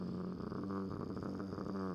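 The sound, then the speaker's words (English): A man lets out a sustained, gravelly vocal growl lasting about two seconds, rough and rumbling, with no other talk, imitating a rapper's signature growl. “You can tribute him to the growl.”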